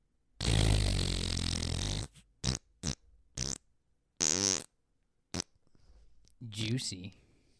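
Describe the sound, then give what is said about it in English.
A voice imitates a babbling brook with wet, gurgling mouth sounds: a long sputtering burst followed by several short bubbly pops and trills, fairly loud. “I was actually going for a babbling brook, but yeah, I'll take the...”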